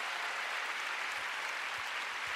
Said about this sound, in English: Come on, give the Lord a big hand.